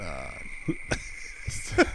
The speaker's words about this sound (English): So just crickets.